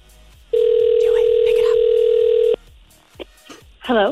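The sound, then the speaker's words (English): A single two-second ringback tone on an outgoing phone call made by a radio station calling a listener back, steady and loud, followed by a quiet pause before a voice briefly answers on the line. “Give us your name, give us your number, because in order for you to qualify, we have to call you back and you have to pick up the phone.”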